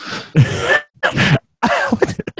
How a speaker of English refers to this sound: I'm so sorry for my coughing.